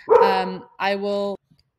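A dog barks twice, each bark long and drawn out with a loud, harmonic, slightly whiny tone, followed by silence.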